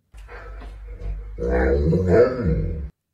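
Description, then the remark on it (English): An Alaskan Malamute dog vocalizes in a talking-like way: a low grumble swells into a louder, wavering, speech-like howl with gliding pitch, heard alone for about three seconds. “The dog, an Alaskan Malamute, walks into the back of the shot, opens his little mouth, and this comes out.”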